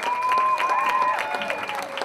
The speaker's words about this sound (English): Big round of applause